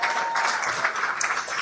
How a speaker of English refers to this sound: A round of applause for everyone at Giant Dwarf for putting this on a Sunday afternoon.